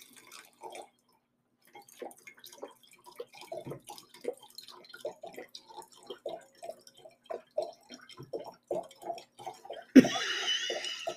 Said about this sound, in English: This is the most gentle pour I've ever heard.